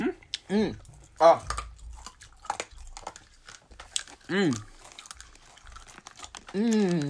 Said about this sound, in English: There really isn't another gum out there that you can get this type of crunch from.